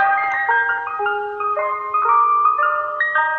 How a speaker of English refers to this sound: In England, it's apparently green sleeves on the ice cream trucks, which has got to be better than what we hear in New York, which is this.